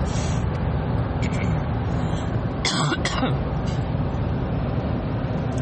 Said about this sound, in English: Whether that's, hang on, let me clear my throat.